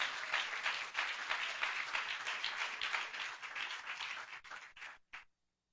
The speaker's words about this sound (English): Could you clap your hands to the Lord?